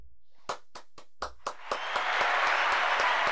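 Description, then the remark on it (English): An applause sound effect, a round of applause for people who put their lives on the line to save others, begins with a few sharp, separate claps, then quickly swells into a dense, steady wash of many hands clapping together, moderately loud. “You guys definitely deserve a round of applause.”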